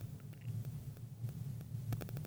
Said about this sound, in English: I keep hearing the static. Oh. That's your end or my end?